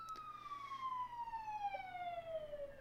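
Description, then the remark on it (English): A police siren wails, its steady tone slowly sliding downward in pitch as it passes, with a low background hum and no talking. “I agree with the police sirens in the background.”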